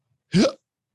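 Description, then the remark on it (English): A single loud, abrupt hiccup with an open-mouthed, voiced gulp, surrounded by silence. “How do you hiccup? With my mouth open.”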